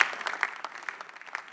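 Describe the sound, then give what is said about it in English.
A church audience applauds, giving a clap to Jesus; many hands clapping in a dense, steady crackle that holds at an even, moderate level throughout, with no voices over it. “Shall we give a mighty clap of to Jesus, the owner of this great church?”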